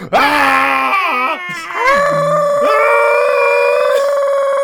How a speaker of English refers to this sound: Wow, we have certainly done it. We've certainly all just sat there and yelled. That's what a podcast is. It's just three dudes sitting around yelling. Three grown dudes yelling into the void.